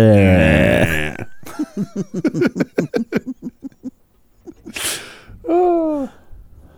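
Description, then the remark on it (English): A voice imitates a cow's low, drawn-out moo, followed by a run of rhythmic laughing bursts, a sharp breath, and another short wavering vocal moo. “The cow says.”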